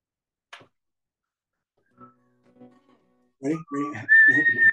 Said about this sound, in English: Ready? I can't whistle. I'm just trying to whistle. Sorry, guys.